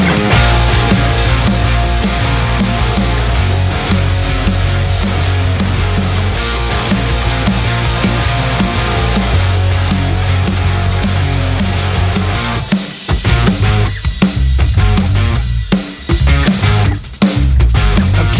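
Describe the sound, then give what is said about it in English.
A loud, dense emo rock track plays on Radio Warrington with heavy bass and driving full-band instrumentation, then breaks near the end into choppy stop-start hits. “So this song goes out to anyone who's going to emo prom tomorrow.”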